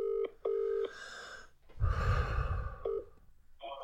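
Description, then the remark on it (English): Telephone keypad tones beep in short, steady bursts as a number is dialed for a prank call, several presses with uneven gaps, while a loud, breathy exhale or sniff fills the middle. No one speaks. “For the prank call today, we're going to do the abusive partner prank call.”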